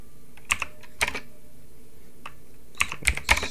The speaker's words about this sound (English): sorry that you're just hearing this typing, but I'm so angry right now.